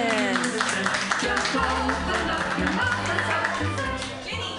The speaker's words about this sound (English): Put your hands together, everybody, and clap them wildly